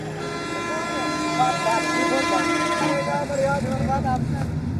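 Busy street traffic in Delhi, India, hums steadily, with car horns honking repeatedly over a dense, continuous roar of engines and crowd noise.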